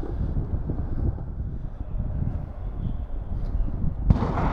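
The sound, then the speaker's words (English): Tear gas canisters are fired round after round at a street protest march, a steady stream of dull pops and thuds over a heavy, wind-like rumble. A sharper, louder blast cracks out near the end. “Shooting off round after round of tear gas.”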